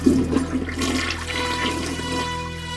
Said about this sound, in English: One of my kids just tried to flush a pair of dirty underwear down the toilet.